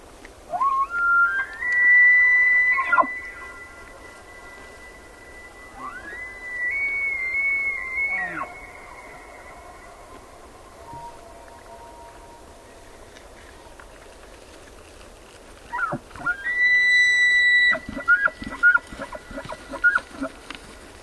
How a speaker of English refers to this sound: Jonathan Storm recorded these two elk bugling across a high meadow in Yellowstone National Park, making their best show for females